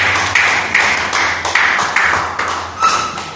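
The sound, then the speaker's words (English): An audience claps together during a clap offering at a church service, in a steady rhythm of about two or three beats per second over a dense wash of applause. The clapping is loud and continuous with a low hum underneath, and nobody speaks. “Come on, join your hands together for them.”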